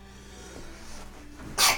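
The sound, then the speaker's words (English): A single sharp, breathy sneeze bursts out near the end, fairly loud, after a stretch of quiet. “Bless you.”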